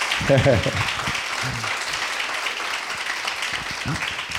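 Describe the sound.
Steady, crackling applause from a crowd runs through the whole stretch, with a few brief bursts of voices over it at the start and near the end.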